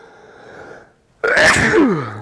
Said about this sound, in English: I'm about to sneeze.